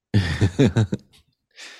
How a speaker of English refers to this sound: Just out of breath, more breathing. Yeah. Deeper breathing. Mm-hmm. Breathe through my nose.